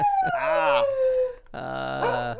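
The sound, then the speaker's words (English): A dog called Mueller, 'the fake news dog', lets out two long, drawn-out howls, loud and wavering, with a brief pause between them and no one talking. “Yes, and as always, Michelle Malkin's favorite clickbait, Mueller, the fake news dog.”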